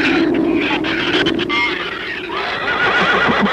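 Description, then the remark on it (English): Livestock in a barn that giant shrews have got into, mostly horses whinnying and neighing loudly over one another in a continuous, agitated chorus, with high shrill cries and a rough clattering undertone throughout. “It was the livestock. The shrews got into the barn.”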